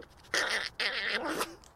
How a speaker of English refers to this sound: Okay, you need to lightly blow your nose.